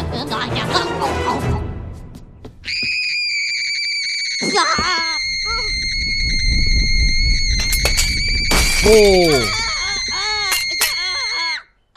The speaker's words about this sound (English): Whoa, that scream. I thought that was going to transform him back for some reason.